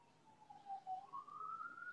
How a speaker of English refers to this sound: I love the siren in the background. It's like, pay attention.